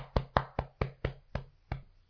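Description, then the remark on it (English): A person beats their chest to imitate the wingbeats of a turkey flying across a creek: about seven dull, hollow thumps in quick succession, slowing slightly and fading a little toward the end, with no talking. “But I still have arms, so I'm going to kind of semi-imitate it, but I'm actually going to beat my chest. How about that? So you sound like a turkey flying across the creek.”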